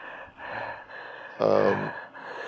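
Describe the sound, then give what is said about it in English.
Heavy, panicked breathing from a man with a napkin over his mouth: a run of quick, ragged breaths with one loud, strained gasp in the middle, all with no talking. “he's putting a napkin over his mouth, making it harder to breathe”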